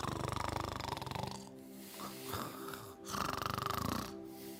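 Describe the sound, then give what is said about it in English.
A woman snores loudly in long rasping breaths, each drawn-out rattle rising and falling in a slow steady rhythm, with no voices present. “But this woman was snoring.”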